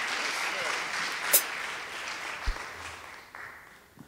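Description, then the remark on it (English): A church audience claps steadily to welcome someone during a morning service, a dense wash of applause that holds for several seconds before gradually thinning out, with a few sharper individual claps near the start. “So let's go ahead as a church and just welcome him with applause this morning.”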